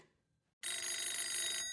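A loud telephone bell rings in a sustained metallic burst after a brief near-silence, its bright clattering tone continuing steadily to the end, as Clark calls McGuire.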